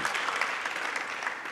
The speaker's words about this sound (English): Amazing women. That's big round of applause. It's unbelievable.